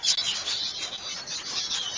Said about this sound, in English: Lots of bats.